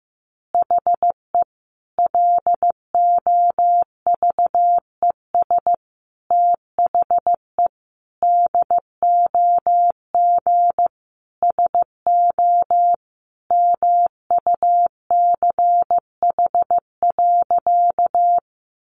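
Morse code sent at a steady 15 words per minute: a single mid-pitched tone keyed into crisp short and long beeps, grouped into words with brief gaps, with no voices or other sounds.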